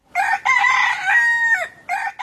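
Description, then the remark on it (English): At dawn at the Minawao refugee camp in northern Cameroon, a rooster crows loudly, a drawn-out harmonic call rising and holding before dropping off, followed by a couple of shorter clucking bursts. “A rooster crows.”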